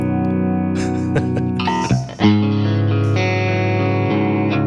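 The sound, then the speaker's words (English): An electric guitar played through a Line 6 amp modeler on its Litigator amp model, with big reverb and delay added, rings out sustained, effect-laden chords, with a few fresh strums and a brief dip midway. It's loud, with no talking. “So this is the Line 6 Litigator.”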